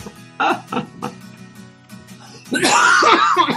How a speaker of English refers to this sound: I've got a little bit of a tickle in my throat, so I might have to just mute myself and just cough it up at some point.